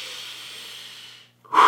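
A long, airy inhale drawn in steadily for over a second, a brief pause, then a louder, forceful breath out that ends abruptly. No one speaks.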